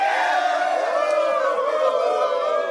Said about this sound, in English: Listen to all that applause.